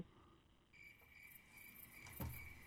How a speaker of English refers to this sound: Crickets.